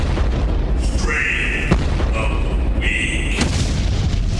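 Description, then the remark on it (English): Booming explosion effects rumble continuously with heavy low-end, punctuated by sharp blasts and bright whooshing sweeps, loud, with no talking, as the intro to the Strain of the Week segment. “I just need a guitar every time I hear those explosions.”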